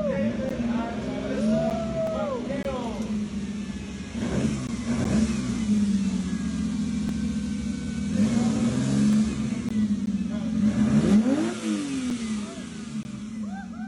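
A car engine, pulled up at an interview tent, idles with a deep, steady rumble, then is revved hard several times, each loud surge rising and falling with a strong, throaty intake roar while the exhaust stays quiet.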